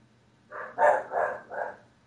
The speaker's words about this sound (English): barking dogs.